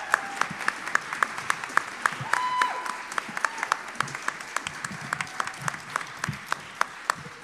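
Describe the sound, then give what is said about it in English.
An audience applauds the actors and everyone involved in a stage production, many hands clapping steadily for several seconds in a dense, uneven patter with some sharper individual claps standing out, at a moderate level and with no talking over it. “I mean, if you really enjoyed it, you might want to stand up and give them a round of applause.”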